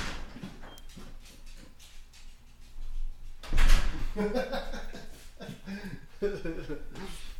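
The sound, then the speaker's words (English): A door is opened to let a dog in, with one loud, rattling burst partway through, surrounded by quieter shuffling and room noise, with a person talking before and after. “But he's trying to go see Sheree. Oh. Just let him in real quick.”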